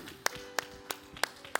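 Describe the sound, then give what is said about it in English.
An audience at a Grace Church worship service claps their hands to Jesus in unison, five sharp, even beats at a steady rhythm with short gaps between them. The claps are fairly soft, and no voices can be heard. “One more time, would you clap your hands to Jesus?”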